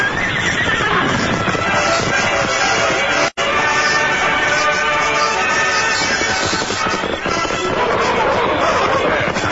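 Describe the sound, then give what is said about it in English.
Loud horse neighing and whinnying over a steady clatter of hooves clip-clopping, continuous and busy throughout, with one brief dropout near the middle. “Get off your horse.”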